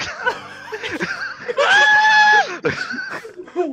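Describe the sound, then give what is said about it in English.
A person lets out a loud, sustained scream lasting under a second, surrounded by snickering, laugh-like vocal sounds before and after. “But I am going to turn around, and I'm going to point at it and scream.”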